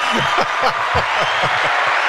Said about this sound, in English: Well, you know what? Where's the clapping?